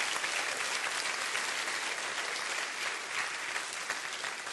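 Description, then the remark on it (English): Steady applause from a church audience giving God a hand clap for the word of the Lord, many hands clapping in a dense, continuous patter that holds at an even, moderate level for several seconds with no voices breaking through. “I think we ought to stop and give God a hand clap right now just for the word of the Lord.”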